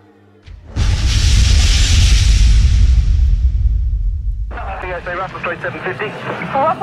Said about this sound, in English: I presume you heard that loud explosion right next to you. Russell 750, it just totally shattered our windows. Russell Street 306, loud explosion just took place outside the front of the complex. There's mess everywhere.